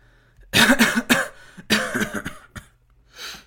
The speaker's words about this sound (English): …, you have a cough there, are you fine?